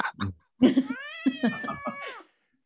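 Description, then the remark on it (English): A cat named Zonda lets out a couple of short chirpy sounds, then a long, drawn-out meow that slides downward in pitch and fades, with a brief quiet pause before it. “Zonda, the cat. What are you doing?”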